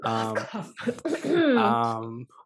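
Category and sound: human body sound, cough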